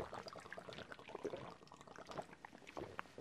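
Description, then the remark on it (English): Someone chugs a Twisted Tea after a toast, with wet swallowing and sloshing liquid in a quick, uneven rhythm for a few seconds, fairly quiet, with no talking. “Hopefully that got picked up by the mic because I just choked half of it.”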